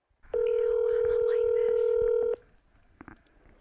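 A phone call connecting: one steady electronic ringing tone holds for about two seconds at moderate loudness, then cuts off into quiet line noise with a few faint clicks.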